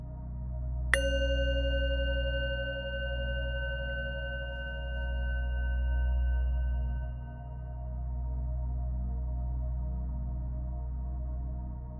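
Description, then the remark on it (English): A single bright bell strike rings out, its clear metallic partials shimmering and slowly fading over several seconds into a quiet, steady low hum. “Now listen to it again, but this time really try and follow the sound with your mind.”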